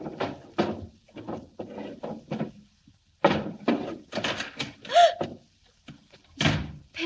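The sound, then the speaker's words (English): Desk drawers in an office are pulled open and pushed shut again and again, an irregular series of wooden slides and thumps with short pauses between them and no one speaking. “I stood there, opening and shutting drawers.”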